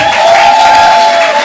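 A crowd applauds steadily, a dense wash of many hands clapping at once, loud and sustained for the whole stretch with no speech on top.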